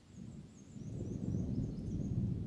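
A low, rolling rumble of distant thunder drifts on steadily, soft and far off, growing more distant as the rain fades out, with faint thin high tones threading above it and no voices.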